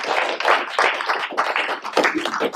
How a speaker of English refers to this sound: Come on, can we give God a hand clap for stuff?